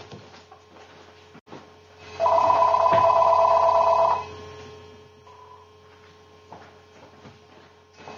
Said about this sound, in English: I'm getting a phone call, but oh, no problem. The bass trombonist – hang on. Can we hang on a second? I just want to – I'll just kill the volume of it.